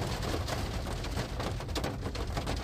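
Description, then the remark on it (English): Steady rain patters on a car's surface in cold weather in Lisbon, a dense, continuous hiss with scattered tapping drops, heard from inside the car with no one talking. “It's very cold and rainy in Lisboa.”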